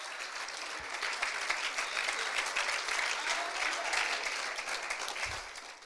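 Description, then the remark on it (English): A crowd at a morning worship service claps hands unto the Lord steadily for several seconds, a dense, even wash of many overlapping claps at a fairly loud level, with no voices standing out. “Let's clap our hands unto the Lord this morning.”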